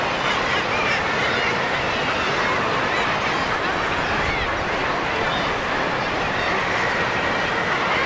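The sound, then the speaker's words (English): A vast colony of guillemots calling from cliff ledges above the sea, a dense, unbroken roar of harsh overlapping growls that stays loud for the whole stretch. “There are guillemots on every ledge. It's astonishing.”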